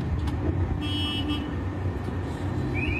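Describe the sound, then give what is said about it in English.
A truck's engine rumbles steadily, a deep continuous drone with faint high-pitched tones briefly sounding over it, as the driver pulls up to his drop location in the rain to drop a box. “So then I'm driving to my location, it's 338. I pull up, pulling up right here.”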